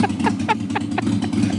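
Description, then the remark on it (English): A motorcycle engine idles with a steady low rumble and faint rhythmic pulsing, holding at a moderate level throughout with no change in revs. “Can you just keep an eye on my motorcycle for a couple minutes while I go into Joe and get a cup of coffee?”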